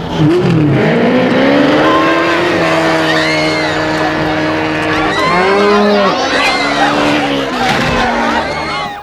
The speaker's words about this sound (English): my number four is what is known now as the Tuk Tuk Taxi from Octopussy